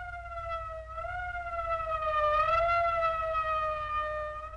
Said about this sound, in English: That's the fifth siren in the last hour. Something's happened down at the cemetery. A lot of police cars and lights.